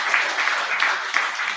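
A steady burst of audience applause congratulating a man on his wedding, many hands clapping together in a dense, even wash of sound with small pulsing swells, fairly loud, no voices.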